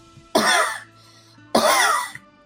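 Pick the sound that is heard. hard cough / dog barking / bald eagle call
hard cough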